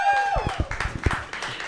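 An audience applauds, a dense crackling wash of many hands clapping at a steady level, opening with a brief high whistle-like tone that slides downward.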